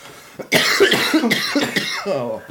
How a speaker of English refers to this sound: Everybody's going to be coughing.